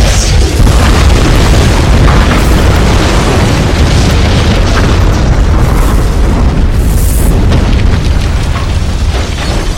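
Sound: massive explosion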